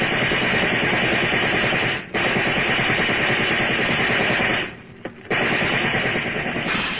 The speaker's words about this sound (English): Get down low, Babe. Those cops are using riot guns.